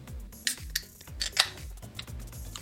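A bottle of double IPA beer is opened with a few sharp metallic clicks and clinks of the cap being pried off, ringing briefly over a low, rhythmic thumping in the background.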